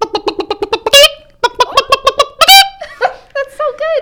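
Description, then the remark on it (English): A person imitates a chicken: quick runs of rhythmic, clipped clucks broken by two loud, high, drawn-out squawks, then warbling bawk-like calls. No one speaks. “So I will give you my chicken cluck.”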